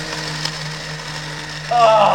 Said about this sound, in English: You hear mechanical grinding as it's like crunching.